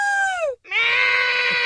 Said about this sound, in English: Everybody scream.